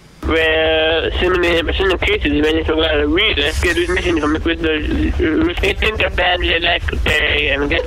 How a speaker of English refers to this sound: It's got like cell phone interference on top of. Anyone want to take a stab at what he's trying to say?